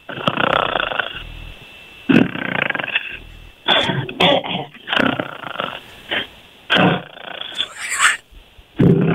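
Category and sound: vocal imitation, voice imitating snoring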